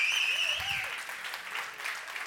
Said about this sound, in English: No, that was a Biden clap. I need a Jesus clap. Come on. Come on. Give me a Jesus clap.